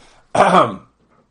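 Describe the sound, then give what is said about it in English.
A single rough throat clearing by a speaker with a sore throat at 11 o'clock on a Saturday night, coughing away from the microphone: a short harsh burst about half a second long, fairly loud, with faint murmuring before and after it. “And as you could hear, I try to cough away from the mic and try to do it over here.”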